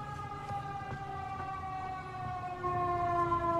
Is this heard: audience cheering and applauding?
no